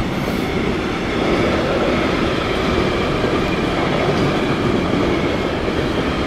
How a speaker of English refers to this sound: Or is a big train here? It's an industrial train from Germany.